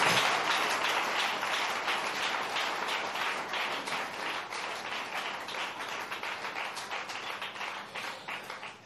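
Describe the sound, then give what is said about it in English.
A church audience claps their hands to bless the Lord, a dense crowd of overlapping claps, steady at moderate loudness, gradually loosening and thinning toward the end. “Clap your hands and bless the Lord.”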